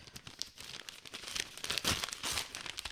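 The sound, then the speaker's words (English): Gift wrapping paper crinkles and tears in quick, irregular bursts as a present is ripped open, fairly loud, with sharp rips standing out from continuous rustling; no voices are heard. “All right. We're ripping. Oh, we got paper.”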